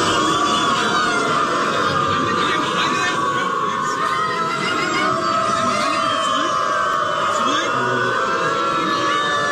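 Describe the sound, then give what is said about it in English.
A large crowd of about 1,000 people who identify as dogs, gathered together, barks and howls like dogs, a dense, loud, continuous din of overlapping yelps and whoops with no letup for the whole stretch. “And you're probably wondering, like, what would that sound like with 1,000 people that identify as a dog show up together?”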